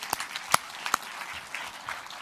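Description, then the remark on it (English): A crowd applauds in a steady wash of clapping, with a few sharper, louder individual claps standing out early on; no one speaks over it. “Well, let's give him a round of applause then.”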